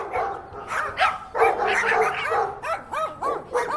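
A dog barks repeatedly and excitedly, with short sharp yips coming in quick bursts and a denser flurry in the middle. The barking is fairly loud, with no one talking.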